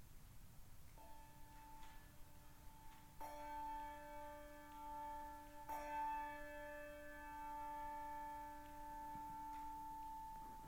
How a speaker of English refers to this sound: We will hear the bell tolled 21 times through the sermon in and around our 11 o'clock time.